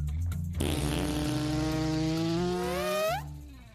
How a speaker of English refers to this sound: the sound guys put together like three different farts and layered them on top of each other